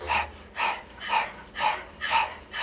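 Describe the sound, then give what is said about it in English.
A person pants rhythmically like a dog as a breathing exercise, mouth open and tongue out: quick, breathy open-mouth huffs in a steady rhythm, about two per second, fairly soft, with no talking. “We're going to open the mouth, stick out the tongue, and begin to pant rhythmically like a dog.”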